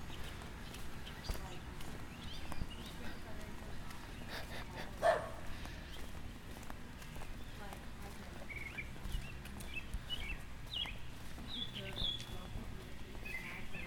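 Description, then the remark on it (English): Scattered bird calls chirp outdoors, short bright phrases popping up every few seconds over a steady bed of outdoor background noise. “Got some good bird calls.”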